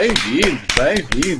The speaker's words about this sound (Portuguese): Epá, estas palmas têm um efeito muito fixe, não tem? É boa, não é? Fixe.